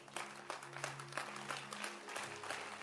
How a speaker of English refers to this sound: Clap your hands for them. Keep clapping, keep clapping, keep clapping, keep clapping, keep clapping, keep clapping.